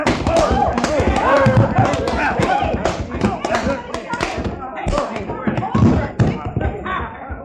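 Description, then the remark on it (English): A flurry of fistfight punches lands in quick, irregular succession, heavy thuds and smacks, mixed with scuffling and grunting voices throughout. “You dare near knocked his head right off his shoulder, you did.”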